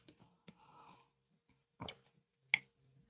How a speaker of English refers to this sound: I just heard you gulp. That's because nobody's saying anything. And I can't be a ventriloquist and drink and talk at the same time. That whiskey is disgusting.